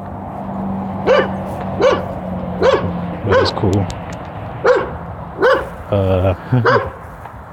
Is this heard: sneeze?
no